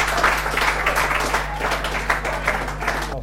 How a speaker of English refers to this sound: Give them all a round of applause.